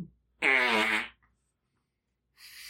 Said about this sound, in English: But what the hell was that? That was an armpit fart. Here, I'll try again.